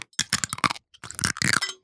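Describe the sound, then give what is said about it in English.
Crisp, crackly crunching of an edible straw being chewed by a man after he sipped water through it from his water bottle, in two quick bursts of bites separated by a brief pause, loud and sharp with no talking over it. “Oh, and he's now munching on it.”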